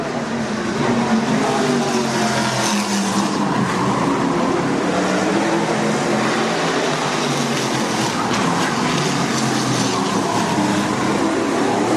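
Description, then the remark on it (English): Race cars roar steadily around a track during qualifying, sliding around a curve: a dense, continuous wash of engine noise with rising and falling passes blending together at a loud, constant level, with no voices. “Whoa, they just slide around that curve. That's ballsy. Man. Amazing, the cars can hold.”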